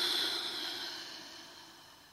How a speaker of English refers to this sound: And as you do, we'll just begin with a couple of deliberate breaths just to relax a little bit in this posture. So breathing in and breathing out.